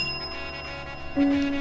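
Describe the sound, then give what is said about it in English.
A radio show host rings a bright metallic bell, its tones sustained with high shimmering overtones, then a second, louder strike jumps in near the end. No voices, just the clear ringing. “Honk your horn for me while I ring my bell for you.”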